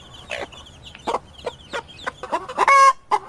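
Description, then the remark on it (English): A hen cackles after laying an egg: a run of short, sharp clucks that speed up and climb into one loud, drawn-out squawk, with no talking. “She's bragging about just laying an egg.”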